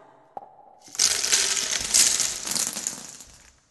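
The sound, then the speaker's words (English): A short click, then a dense cascade of small hard candies clattering and rattling out of a candy machine for a couple of seconds, bright and busy, before stopping abruptly. “This from a guy with his hand stuck in a candy machine.”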